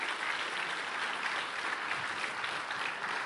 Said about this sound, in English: If your birthday comes after 2001, stand up. I want our congregation to see how many of you they are. Let's give these a clap, please. Yeah.